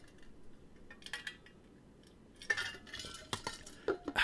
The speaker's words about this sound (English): Time for a drink. Slightly parched. I'm going to hit my trusty canteen. Now, what's in here? We don't know. You guys, I know you guys can hear the ice, but is it water? Is it whiskey? Who's to say?